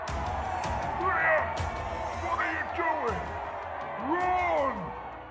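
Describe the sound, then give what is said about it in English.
A crowd of black-robed cultists roars and cheers in triumph as they raise their weapons, many voices shouting together in a dense, steady wall of sound, with individual rising whoops breaking out above the din. “A loud roar of triumph came from the cultists as they raised their weapons up to cheer amongst the sea of black robes and blood-red banners.”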